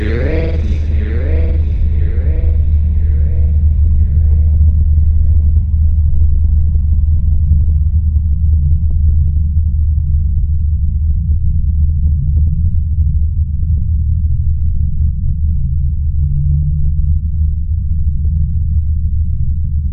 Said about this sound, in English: The unexplained low frequency drone sound. Can you hear it?